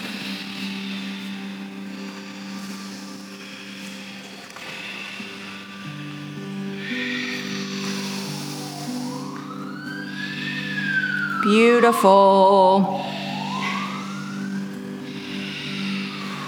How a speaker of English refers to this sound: We're just grateful those sirens aren't for our worries and woes, right? And sending wellness out to whoever it's going to.